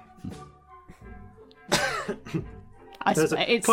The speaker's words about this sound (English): coughs a little